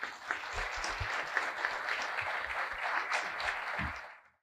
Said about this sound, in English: Let's welcome Rajiv Ji to Seva International Masik Milan with a great round of applause.